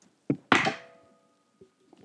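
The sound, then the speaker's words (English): Dice rolled onto a table for a dexterity check tumble: a sharp knock, then a louder clattering hit with a brief ringing tail that fades out, followed by a couple of faint small taps as they settle. No voices. “All right, roll dex for me.”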